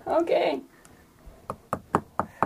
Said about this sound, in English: Can I knock again?